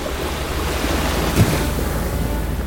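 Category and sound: nature, ocean waves at sea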